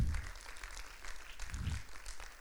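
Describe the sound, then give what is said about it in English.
Steady applause from a crowd giving God a hand clap, a continuous wash of many hands clapping at moderate volume, with no voices rising above it. “Give God a hand clap.”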